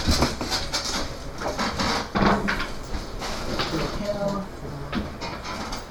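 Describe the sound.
A rocking chair creaks repeatedly in short, groaning strains, some low and some higher-pitched, over a steady noisy background with faint voices.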